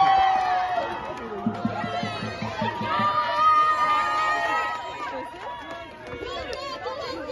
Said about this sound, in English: You're going to see one guy come up, grab the Netanyahu pinata and just start punching it, beating it, while everyone cheers.